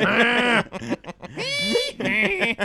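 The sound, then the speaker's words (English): A man loudly imitates a donkey's bray, a few strained, nasal hee-haw bursts with wavering pitch, one after another with no other sounds around them. “See, maybe you should bring that back donkey.”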